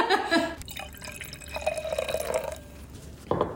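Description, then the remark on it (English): Brut sparkling wine is poured into a glass, a steady gurgling stream whose pitch rises as the glass fills, with a faint fizzy hiss and a brief clink at the end. “Tracy just poured me a glass of a Brut.”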